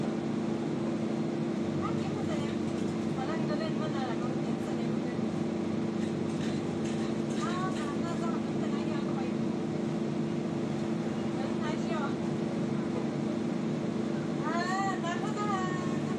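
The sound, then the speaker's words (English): A steady, low engine rumble fills the inside of a moving bus, droning continuously while several voices talk intermittently in the background. “Some of these folks just love talking loud on the bus.”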